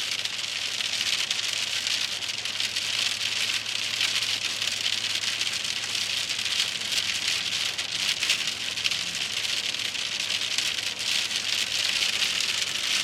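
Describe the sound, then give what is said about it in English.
Steady rain from an Arizona storm hisses and patters on a hard surface, a dense, even wash of drops that stays constant throughout with no voices, just the continuous downpour. “Typical Arizona storm.”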